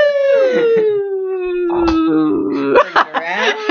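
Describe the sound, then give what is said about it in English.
Dogs howl loudly: one long, slowly falling howl carries for several seconds, then other voices join in with overlapping howls and short yips. “I just asked Ethan to take a photo, but he's literally surrounded by dogs”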